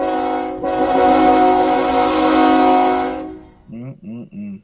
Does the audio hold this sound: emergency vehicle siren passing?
no